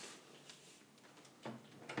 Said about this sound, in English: Coming back into this room. Shutting the door.